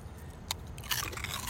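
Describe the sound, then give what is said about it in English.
Dry crunching as someone bites into crisp seafood-flavored snack chips, like shrimp chips: a sharp bite followed by a burst of brittle, crackly chewing, with no talking. “They have a similar crunch to a big crouton.”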